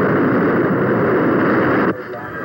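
A loud, steady roar of the world's newest experimental plane flying faster than sound, broad and rushing, holds for almost two seconds before cutting off abruptly to a much quieter hum.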